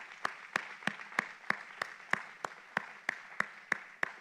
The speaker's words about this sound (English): I love him, and you get tired of this, but I just want to give him another great worship offering and applause right now. Hallelujah.